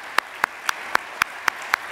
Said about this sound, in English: Could we just begin today with a round of applause for Lisa and all the ALEC staff, supporters, and legislative members here.